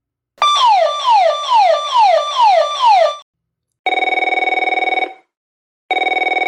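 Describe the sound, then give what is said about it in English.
A telephone rings loudly, first with a quick series of falling electronic warbles, then two steady, buzzing rings separated by short pauses. No one speaks. “The phone rang, and I jumped about 2 feet straight up.”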